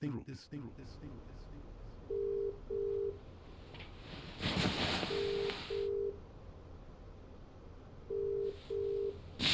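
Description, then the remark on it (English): A telephone call is dialed and a ringback tone repeats three times as steady paired beeps, with a few clicks at the start and a brief rustling burst midway, heard clearly as if through a handset. “You know it's me on the phone, and all you have to say is hello?”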